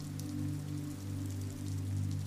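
Steady rain in London patters continuously with scattered drops ticking through it, over a low, constant rumbling drone of wind. No voices, moderately quiet throughout.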